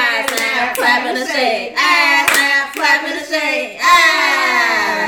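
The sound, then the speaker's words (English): Sharp finger snaps and hand claps of a snap, clap and shake self-love celebration land in a loose, irregular rhythm over several seconds, mixed with loud, sustained voices that sound like cheering or sing-song celebration. “We gonna celebrate that with a snap, clap, and a shake.”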